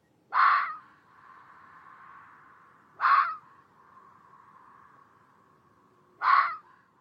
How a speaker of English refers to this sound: And I think a great example of the unknown and the dark forest is the fucking sound that like a fox makes, the vixen scream.